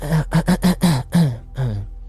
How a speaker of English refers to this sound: … clear her throat. Almost like she's trying to get your attention.